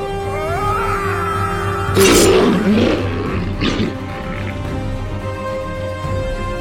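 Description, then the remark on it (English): A monster, stabbed in its side with a blade, lets out a loud, anguished roar lasting a couple of seconds, rising abruptly then trailing off with a growl, over a steady low droning backdrop. “Roaring in pain, the creature turned to the guardsman, and with the impossibly rapid movement of a snake, it snatched him in his claw.”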